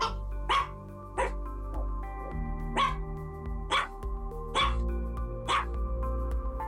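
A dog barks repeatedly in sharp, evenly spaced yaps, about six loud barks with a few softer ones between, over a steady hum of sustained musical tones.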